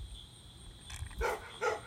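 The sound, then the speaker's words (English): A neighbor's big dog barks a few times at night in the neighbor's pitch-black backyard, three short gruff woofs in quick succession over a low outdoor rumble, with no talking. “You can just hear their dogs barking and barking.”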